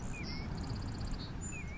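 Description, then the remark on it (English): Quiet outdoor scene with birds chirping: a rapid high-pitched trill of short tweets plus a few thin whistles, set against a low steady background rumble. No one speaks. “Listen to the birds.”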